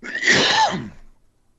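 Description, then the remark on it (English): A single loud, harsh cough bursts out, rasping for under a second before trailing off into quiet, with no one speaking. “Who's coughing?”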